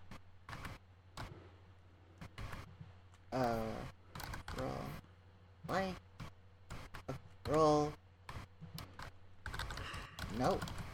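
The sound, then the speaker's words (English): Rapid clatter of typing on a computer keyboard, irregular bursts of crisp key clicks running throughout, with a few brief stretches of someone's voice breaking in between. “Don't forget, you also have the dice roller, so you don't have to type it out.”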